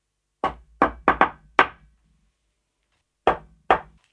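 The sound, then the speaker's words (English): A person demonstrates an imitation of a Bigfoot tree knock: a series of sharp knocks on a hard surface, five quick raps in an uneven rhythm, a brief pause, then two more knocks, each ringing out briefly in otherwise quiet surroundings. “But I do wonder, though, just like how the tree knock takes shape, because how I have it in my head, and I'm going to demonstrate this now.”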